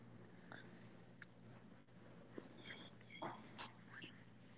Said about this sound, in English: You're going to hear Sam's dog barking.